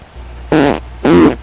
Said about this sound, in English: I'm going to fart.